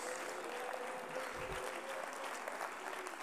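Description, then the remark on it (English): An audience at a church service claps their hands unto the Lord in a steady, dense wash of applause, many palms overlapping into a continuous bright patter with a brief low thump partway through. “Oh, come on, somebody clap your hands unto the Lord today.”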